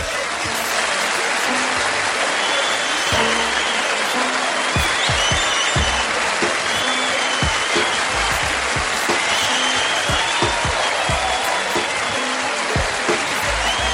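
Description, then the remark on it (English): A crowd applauds the Shiznit Show steadily for the whole stretch, a dense, loud wash of clapping hands that holds an even level without building or fading, with no voices standing out. “Now put your hands together for the Shiznit Show.”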